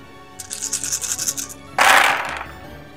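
A handful of 13 dice rattles in a quick, rhythmic shake for about a second during a tabletop game, then spills out in a loud clattering tumble that fades as they settle. No one speaks.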